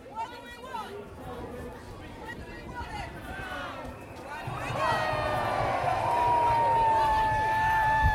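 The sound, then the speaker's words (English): A large outdoor crowd at a political march murmurs and chatters at a distance while the leader of the opposition addresses it, then swells into a louder, sustained roar of cheering about halfway through, with a thin whistle-like tone riding above it. “over there in the distance, Jeremy Corbyn, leader of the opposition, at least at the time of recording, is addressing the baying crowd”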